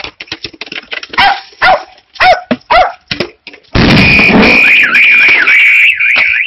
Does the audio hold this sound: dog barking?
yes